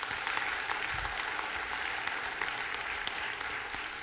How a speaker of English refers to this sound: And can we just give God a round of applause for all that?